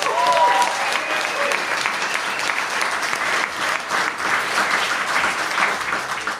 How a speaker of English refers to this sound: Give yourself an amazing cheer. Come on.